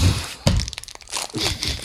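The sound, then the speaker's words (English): Crinkly plastic packaging rustles and crackles as an M's power cookie (power bite) is pulled out of its packet, with a sharp snap near the start followed by irregular crinkles and small crunchy clicks. “Just pulling out an M's power cookie, power bite.”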